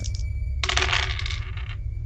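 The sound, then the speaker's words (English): Three dice, two positive and one negative, clatter and tumble across a hard surface for about a second, a bright rattle of quick clicks that settles and stops, with a low steady hum underneath and no talking. “So you're going to do two positive dice, one negative dice.”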